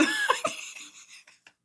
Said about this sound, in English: I had a cough.